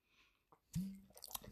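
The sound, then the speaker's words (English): A sip of beer and a throaty swallow, followed by a brief crackling fizz of bubbles, with no talking. “Let me have a sip of beer, because that was, Jesus Christ, that was a lengthy intro.”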